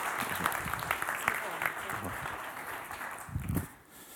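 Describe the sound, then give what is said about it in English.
A church audience claps together, welcoming a man up to share his testimony, in a steady, dense patter of many hands, a broad crackling wash that holds for about four seconds with a few low voices murmuring underneath. “Give him a clap.”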